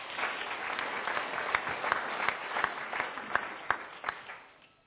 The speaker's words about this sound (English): Can you give the man of God a clap?